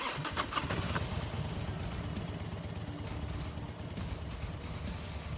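A dirt bike engine sputters to life with a sharp burst, then settles into a steady, throaty rumble, fairly loud throughout, as the rider takes off between cars in a garage. No voices.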